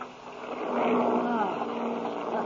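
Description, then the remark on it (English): The motors of an airplane flying into a storm drone with an uneven, rough hum, their low tones wavering and swelling midway before settling back into a steady, loud rumble. “Hey, sounds like something's wrong. Huh? Listen to those motors.”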